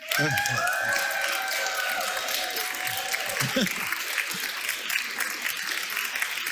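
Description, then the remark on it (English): A conference audience bursts into sustained applause and cheering, standing to show how much they enjoyed the conference, with dense clapping throughout and shrill whoops and whistles rising above it in the first few seconds before easing into steady clapping. “If you it's beyond your expectation and you loved it, you get to stand up and cheer as loud as you can.”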